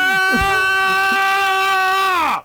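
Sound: screaming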